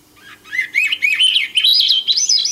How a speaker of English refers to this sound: The song of the salmonberry bird reminds us of the abiding connection between birds and people and the nourishment nature provides us both.